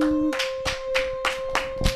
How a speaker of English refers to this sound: Woo! Hear everyone's claps.